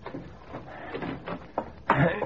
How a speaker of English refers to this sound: Go back into the guest room, dig out the keys out of Frankie's pocket, and unlock the closet door.